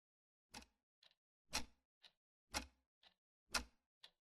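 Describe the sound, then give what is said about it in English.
A clock over the stove in the dark kitchen of McCray House ticks steadily at night, reading 1:06, alternating a sharper tick with a softer tock about once per second, clear with nothing else audible. “The clock over the stove says 1:06.”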